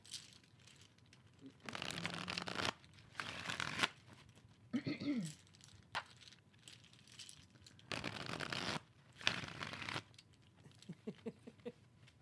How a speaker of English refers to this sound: I like hearing you shuffle.